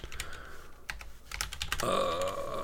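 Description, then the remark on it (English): Quick, uneven clicks on a computer keyboard as someone types, a run of sharp keystrokes that blends into a steadier hum of background noise toward the end. “I'm really bad at typing.”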